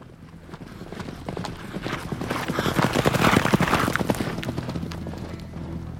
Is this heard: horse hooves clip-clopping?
yes